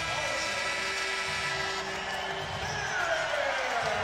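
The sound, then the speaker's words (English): An arena crowd in Toronto stands and applauds RJ Barrett during a Raptors basketball game against New York, a dense, steady wash of clapping and crowd noise that holds at an even level for about four seconds, with a faint sliding tone near the end. “A lot of people standing and applauding.”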